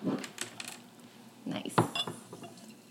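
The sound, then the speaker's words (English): Champagne splashes and fizzes as it's poured into cups, with light clinks and handling knocks scattered through, fairly quiet, with no talking. “Give you a visual here. Just pouring it up.”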